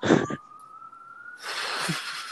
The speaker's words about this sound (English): Whoa, We gotta have our jingle. 2-minute tell.